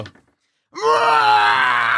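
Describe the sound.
After a brief pause, a voice lets out a loud, sustained, strained scream imitating the creature Cribbit, held steady for over a second with a raspy, groaning edge.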